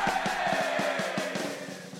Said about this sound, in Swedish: Applåd.